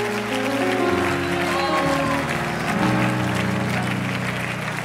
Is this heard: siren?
no